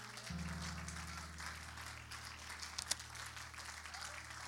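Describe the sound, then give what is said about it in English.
An audience claps their hands unto the Lord together in a dense, steady wash of applause that carries on throughout, with a sustained low musical chord swelling in beneath it just after the start. “One more time, would you clap your hands unto the Lord?”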